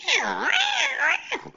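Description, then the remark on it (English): A loud, drawn-out cat scream rises and falls in a wavering yowl for over a second, harsh, then cuts off as a brief voice begins. “He threw it. And the cat screamed the whole way.”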